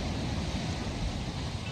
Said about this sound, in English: Yes, it is the sound of the crashing waves.